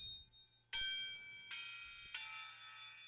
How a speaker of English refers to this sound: What's a crotale? All kinds of cymbals. A crotale is like a tuned cymbal disc, which sounds like this.